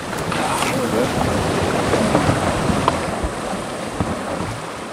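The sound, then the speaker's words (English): Rushing water of the Petbury River churns steadily, a dense continuous splashing roar around a raft heading downriver through dense rainforest, with faint indistinct voices now and then beneath the noise. “We're off down the Petbury River, which tumbles and meanders through dense rainforests.”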